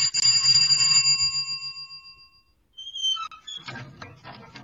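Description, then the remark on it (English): The doorbell of a house rings once during a Halloween trick-or-treat game, bright, its metallic tone ringing out and fading over about two seconds; after a brief silence, high squeaky chirps from lots of bats and rustling follow. “You ring the doorbell.”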